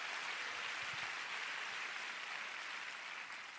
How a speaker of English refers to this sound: Come on, give the Lord a big clap.